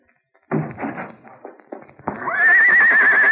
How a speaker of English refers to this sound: It's Tonto's horse.